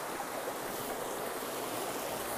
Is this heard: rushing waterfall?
yes